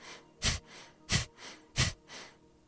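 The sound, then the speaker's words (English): Three sharp, forceful exhales through the nose in a steady quick rhythm, each followed by a softer, quieter passive inhale drawn in by relaxing the belly, with no talking. “that's going to allow you to breathe out forcefully through the nose like that”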